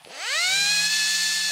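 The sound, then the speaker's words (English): A high-pitched dentist's drill whirs up quickly, then holds a steady, piercing whine for about a second and a half before cutting off. It is loud, with no voices. “including a device you'll find at your dentist's office. Does it cause pain? Is it the drill?”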